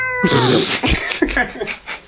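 A cat meows loudly and close by, one drawn-out wavering meow followed by a couple of shorter, strained yowls, with no talking.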